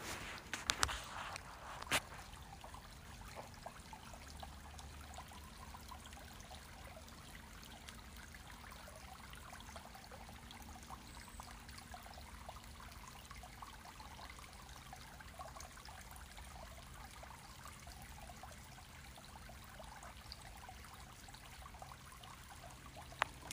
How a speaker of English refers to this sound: just a little fall babbling brook action on October the 6th. And looking at a very shallow little stream covered in leaves.